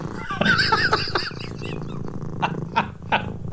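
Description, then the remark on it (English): A human voice imitates a cat's purr and growl, a low rolling rumble with raspy bursts, fairly loud, ending in a few short breathy pulses. “He purrs.”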